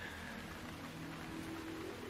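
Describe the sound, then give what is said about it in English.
A rain sound effect in a film: steady rain falls in a continuous, fairly quiet hiss with no breaks, a soft low hum running underneath and no voices. “Yeah, the rain effect and the sound effect.”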